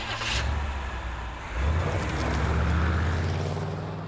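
A car engine rumbles low and steady, rising in pitch and loudness partway through as a man drives off in his car toward a prison, with a broad whoosh of road and air noise throughout.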